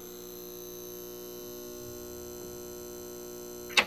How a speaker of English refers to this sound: I never understood in libraries why the buzz of the fluorescent was so loud.